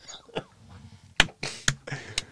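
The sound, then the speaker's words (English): A short run of muffled coughs, four or so sharp bursts coming in quick irregular succession, fairly quiet, with no talking. “I got to hit mute as I start to cough.”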